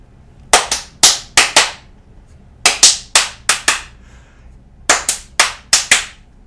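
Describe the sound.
Loud hand claps tap out the syncopated rhythm of a film theme, five sharp claps per phrase, repeated three times with short pauses between. No one speaks.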